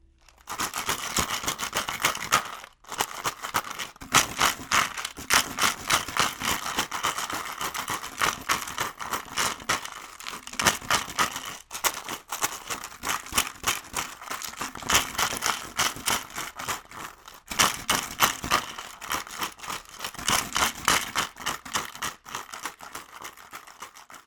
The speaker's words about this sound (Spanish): El sonido sorpresa de hoy fue el de una sonajera casera, la cual construí con una botella de plástico y muchos botones que encontré en una gaveta.